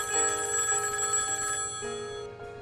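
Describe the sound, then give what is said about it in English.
A telephone rings at 6:15 in the evening with a bright, sustained electronic trill, steady, its tone pulsing slightly before cutting off near the end with no voices present. “It was 6:15 when the call came.”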